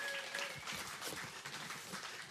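A crowd applauds, dense overlapping hand claps forming a steady, bright wash of noise that holds at an even level throughout, with a few faint tonal whistles or squeaks early on.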